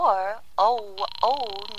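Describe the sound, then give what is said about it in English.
A voice speaks while a steady, pulsing telephone ringing tone begins partway through and continues beneath it, fairly loud, as a call rings through to a Murray Hill exchange number at a husband's office. “Ringing Murray Hill”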